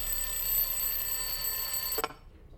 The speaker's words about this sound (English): It was pitch black when my alarm buzzed at 4 a.m.